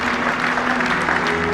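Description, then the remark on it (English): A steady round of applause from a crowd at the England Athletics Hall of Fame evening, many hands clapping in a dense, continuous wash at an even loudness throughout, with no voices standing out. “This is the round of applause from the England Athletics Hall of Fame evening.”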